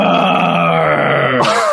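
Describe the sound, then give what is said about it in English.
A person voices a single sustained, growling roar, a quieter version done so as not to blow out the mic, lasting under two seconds, with a rough, harmonic-rich tone that ends in a breathy, hissing release. “And now I'm that kid saying, do the roar. And you did it.”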